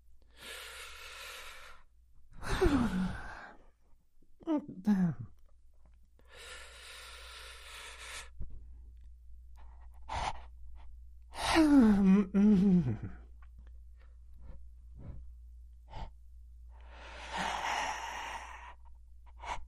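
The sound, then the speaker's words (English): Slow, deep breathing during a relaxation breathing exercise: long airy inhales and exhales alternate with a few drawn-out, voiced sighs, unhurried and spaced apart, with no talking over them. “Create some space between your upper and your lower teeth. And breathe. Okay, let's try breathing here.”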